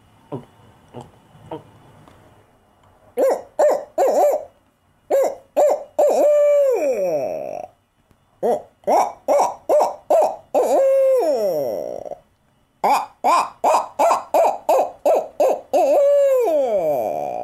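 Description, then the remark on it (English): A few faint gulping clicks as a person swallows air for 3 or 4 gulps to get the right tone, then the person imitates an owl with a long run of loud hoots: short rhythmic bursts broken by drawn-out, falling calls. “I swallow air for 3 or 4 gulps before I start my owl hoot, and it gets the right tone in there.”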